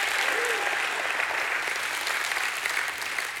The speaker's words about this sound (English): Give the Lord a hand clap and a shout of praise.